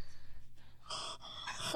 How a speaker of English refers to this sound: Sorry, guys, if you hear heavy breathing, it's me.